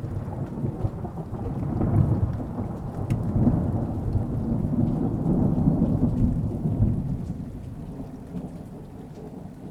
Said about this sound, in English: We'll see you after the thunder.